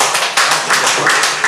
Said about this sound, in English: Please clap for him.